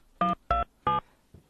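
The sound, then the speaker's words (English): Three short telephone dialing tones beep in quick, even succession, clear, followed by a faint soft thump, as a phone call is dialed again; no one speaks. “We're just going to try it again.”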